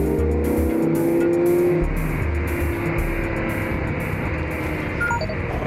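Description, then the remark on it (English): A cat wagon's engine roars loudly and steadily through the night, a deep continuous rumble with a low hum that shifts slightly in pitch, with no voices over it. “Meanwhile, the cat wagon roars through the night.”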